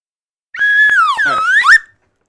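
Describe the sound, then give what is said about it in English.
A loud slide whistle plays alone for about a second and a half, its pitch wobbling, dipping lower, then sweeping back upward before cutting off. “I told you years ago it's a real slide whistle.”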